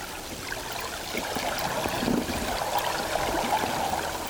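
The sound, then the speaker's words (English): Hydrophone recording of sea wash against the underside of a boat hull, taken with hydrophones some distance from the boat: a steady, hissing wash of water with irregular high-frequency slaps and surges, fairly loud and continuous throughout, with no voices. “Yeah, there are those sort of surges, and then there's that high frequency slap, which I think is sea wash on the underside of the boat, isn't it, even though our hydrophones were some distance away.”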